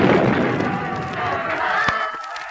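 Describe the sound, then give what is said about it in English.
A ship collides with a sea monster in a loud, churning roar of noise, with a crowd-like clamor throughout and a sharp crack near the end before the din thins out. “I must have been knocked overboard during the collision.”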